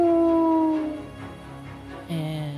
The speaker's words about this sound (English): You shoot it and you hit. He does not move. And he howls again, an almost deafening howl since he is so close.